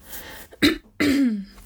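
A fairly loud cough: a short sharp burst followed by a longer, raspy, throaty hack, with no talking around it.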